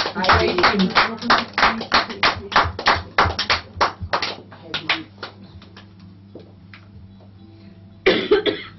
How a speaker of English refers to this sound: Wenn du dem Herrn glaubst, dann klatsche in die Hände und preise den Herrn dadurch. When you believe, clap in your hands.